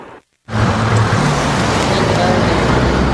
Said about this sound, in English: Well, Sophie, at this time of day, traffic on East First is nonstop, and people living in the blocks nearby are worried the cars will soon come their way.